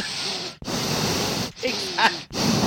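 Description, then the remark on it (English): A voice imitates Michael's heavy, menacing breathing from a film sequel: four loud, raspy breaths in and out, separated by brief pauses, hoarse and steady with no words. “And then you just hear him breathing.”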